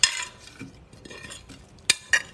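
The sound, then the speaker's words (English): Utensils scrape and clink through a bowl as a salad of wild arugula from Trader Joe's, Persian cucumbers and tomatoes is tossed together, with a soft rustling churn broken by two sharp, bright clinks near the end. No one speaks. “At this point, I'm gonna mix it all together.”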